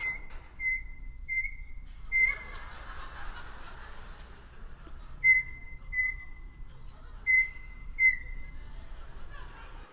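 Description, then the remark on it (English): Carmen, a pet bird, mimics microwave button beeps after the microwave door is opened and closed: short, steady, high-pitched tones in quick pairs, repeated several times, with a brief clattering of the microwave door early on and a low background hum. “So what you're going to hear is me opening and closing the microwave door, which Carmen will take as her cue to make the beeping of the microwave buttons.”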